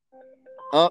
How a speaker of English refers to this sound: Hold on. We got uh-oh. A phone call coming uh-oh.